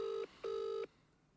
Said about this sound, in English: She won't pick up. Do we turn into just cunts when we walk into this studio? Because none of our family members pick up our phone calls.